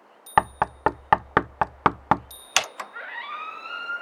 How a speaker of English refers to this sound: No, it's the front door, and that wasn't my knock. Go away! We're closed! I recognize that knock.